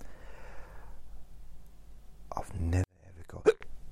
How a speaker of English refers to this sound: I've never got hiccups making a recording before, ever. That's because I had a drink, and I think I was kind of talked a bit too quickly.